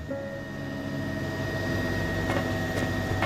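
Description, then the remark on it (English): A helicopter engine whine heard inside the cabin: a steady, unbroken mechanical drone with a thin high-pitched tone riding over it and a few faint clicks, with no one talking. “While it wasn't impossible to talk over the whine of the helicopter, no one had any words to say.”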